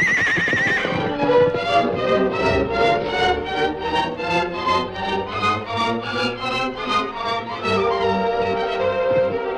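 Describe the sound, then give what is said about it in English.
A horse named Silver neighs and whinnies loudly and repeatedly in agitated bursts, with snorting breaths and a rhythmic thudding underneath, as it bucks and stamps trying to throw off its rider. “He's a ripped, snorting Panama, but I'll ride”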